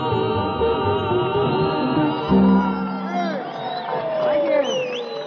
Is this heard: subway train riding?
no